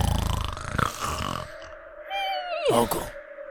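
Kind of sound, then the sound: vocal imitation, voice imitating snoring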